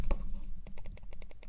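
A rapid run of about nine sharp plastic computer mouse clicks close to the microphone, starting after a brief pause and coming in a quick, fairly even rhythm, with no talking. The mouse is not a silent model.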